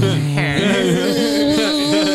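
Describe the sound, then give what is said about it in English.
A person imitates a buzzing insect with a steady, nasal drone, loud, holding it for about two seconds while the pitch wobbles up and down. No words are spoken. “You tell her you're horned, and you buzz at her.”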